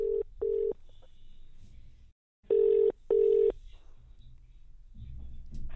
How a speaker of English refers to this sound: Right, so here's me ringing up the NHS.